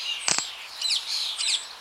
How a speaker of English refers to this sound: The park was full of birds chirping away. It was a symphony worth your time.